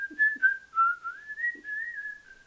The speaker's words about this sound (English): Not bad! I used to work with a milkman. I am very good at whistling.